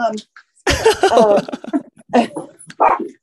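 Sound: dog barking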